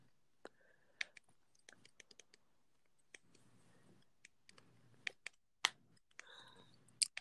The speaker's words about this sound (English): You typing, you searching. Oh, I know. I'm searching on my Roku right now.